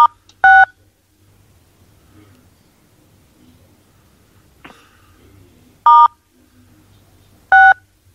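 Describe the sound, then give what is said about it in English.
Loud, crisp telephone keypad tones dialing star six to mute a phone: three short beeps, one near the start and two close together toward the end, over a faint low background hum and murmur. “If everybody could mute their phone... How do you mute? Then it would... Star 6.”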